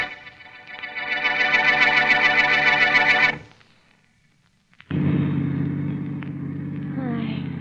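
A car engine revs up loudly and roars for a few seconds, cuts out briefly, then settles into a steady low rumble as it drives along.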